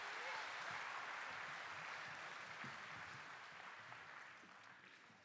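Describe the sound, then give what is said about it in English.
A church audience applauds steadily for a group of boys and girls, a dense wash of many hands clapping at once that holds for several seconds and then eases off slightly toward the end. “Hey, give these boys and girls a round of applause, everybody.”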